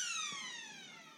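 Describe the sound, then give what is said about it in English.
A quarter-time siren at a football ground, during a Cowboys match, sounds one long, loud, buzzy blast whose pitch sags slowly downward as it winds down, with no voices over it. “I think the siren will go soon. And there it is.”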